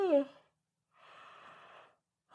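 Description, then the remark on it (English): A single voiced yawn that slides downward in pitch, followed after a short pause by a long, soft, breathy exhale. No one speaks. “I'm sorry. I'm yawning.”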